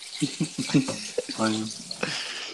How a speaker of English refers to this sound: Are you really turning on water right now in the middle of my podcast?